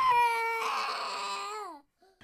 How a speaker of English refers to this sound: And this leads me to, wait, whose 4-year-old boy is screaming?